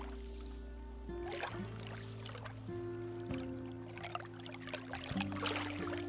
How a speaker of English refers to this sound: Beyond the house is Tamales Bay. The waves gently lap against the shore, and you can see the town of Marshall across the bay where Teresa's mom was born.